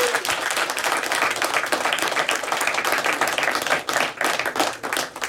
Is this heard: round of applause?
yes